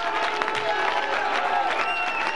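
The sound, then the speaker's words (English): A crowd claps steadily and loudly, dense overlapping hand claps blending into a continuous roar of applause with some faint cheering mixed in. “Come on, let's clap our hands and let these rafters roar.”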